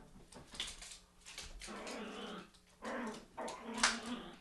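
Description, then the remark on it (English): A female dog in a house growls and whimpers in a playful, excited way, wanting to play, with a run of rumbling growls broken by higher whines and a sharp yip near the end, moderately loud. “What is that dog?”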